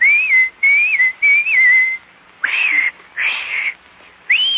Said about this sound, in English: And anytime you need me, you know, just whistle like this.